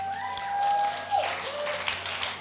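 A crowd claps steadily for a couple of seconds, a dense patter of many hands, while a thin sustained tone rises and then fades beneath it.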